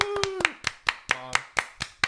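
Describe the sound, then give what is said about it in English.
Steady hand clapping, about nine sharp, even claps at a quick regular pace, with a couple of brief voiced cheers or hums mixed in near the start and middle. “So let's get a round of applause for my mom.”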